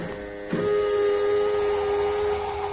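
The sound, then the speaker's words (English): An airlock being exhausted of air until the air pressure reaches zero: a steady mechanical drone with a tonal whine swells up after half a second and holds evenly to the end, with no voices. “Let us know when your helmet is fixed and we'll exhaust the airlock, Lenny.”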